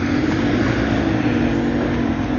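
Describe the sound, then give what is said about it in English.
A dump truck on the next block, its heavy diesel engine droning steadily, a dense low rumble with a gritty midrange roar that holds at an even, loud level throughout, with no voices. “Dump truck on the next block.”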